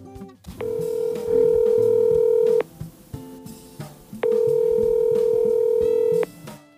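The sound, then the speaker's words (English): Two long, steady telephone ringing tones, each lasting about two seconds with a short gap between them, sound over a low, busy background bed as a phone call to an interview guest rings through on the line. “All right, so tonight we are going to jump on the phone here in a second with my man”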